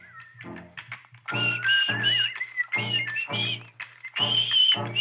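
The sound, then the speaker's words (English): A person whistles a lilting song melody, the pitch sliding between sustained notes, over a steady, pulsing low rhythmic backing. “Hey, maybe my whistling's not so bad after all, huh?”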